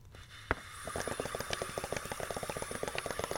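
Water bubbling through a homemade water bottle bong, a steady run of rapid gurgling pops that starts after a single sharp click and continues to the end, with no talking.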